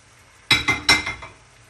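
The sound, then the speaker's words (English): Damsons tipped into a pan of sugar and water that has come to the boil: a quick run of about five sharp, bright clinks and knocks against the pan, loud at first and tapering off, with no talking. “Okay, so I've just added the damsons to the sugar and the water because it's come to the boil.”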